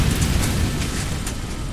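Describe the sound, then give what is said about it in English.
A deep, heavy explosion rumble roars steadily for the whole moment, thick with low-end boom and crackling noise, loud, with no voices: the gas tank of a Ford Econoline van exploding on a hot, steamy night. “It must have been the gas tank exploding.”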